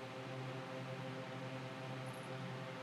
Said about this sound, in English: And anybody who wanted to know what the white noise in the back was, it's the fan is hot as hell.